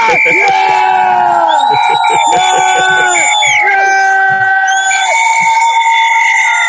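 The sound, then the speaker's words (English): A dense, loud crowd at an outdoor protest gathering in London cheers and shouts continuously, many overlapping voices rising in sustained calls with rhythmic bursts. “And she's in the midst of a crowd of people.”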